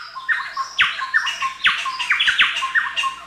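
A loud, harsh bird chorus of repeated squawking, chattering calls in quick bursts, several overlapping notes, from a chowchilla calling, with no voices present.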